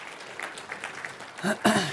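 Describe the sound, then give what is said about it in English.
An audience applauds the band that led worship: a steady wash of many hands clapping, rising toward the end where a couple of loud vocal cheers or whoops break through. “Can we give a round of applause to the band?”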